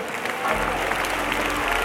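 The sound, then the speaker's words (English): An audience claps their hands to give God the praise, a steady, loud wash of applause, with a low hum underneath and no clear talking over it. “Come on, let's continue to clap our hands and give God the praise.”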